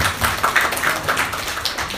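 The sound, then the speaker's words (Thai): A church audience claps for an offering, a dense, steady patter of many hands with sharp bursts in the upper range, continuing evenly for the full two seconds without voices. “I've never received a clap of an offering before.”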